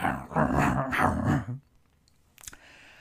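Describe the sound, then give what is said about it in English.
A voice on a phone call lets out a loud, guttural growl and snarl, like an animal, for about a second and a half. It then falls quiet apart from a brief sharp click. “And it's growling, and it's making these animalistic snarling noises.”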